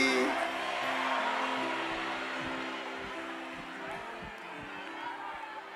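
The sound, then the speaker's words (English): A large crowd shouts together in a steady, unbroken roar, many voices blending into a loud chant-like din of "I see you, LP" that holds for several seconds without pause. “They are shouting, "I see you, LP."”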